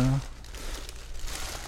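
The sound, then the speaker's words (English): Continuous crinkling and rustling of plastic wrapping as a gift in a wrapper inside a plastic golf shop bag is unwrapped, with a short burst of a voice at the very start. “It's in a wrapper, and now it's in a fancy plastic bag.”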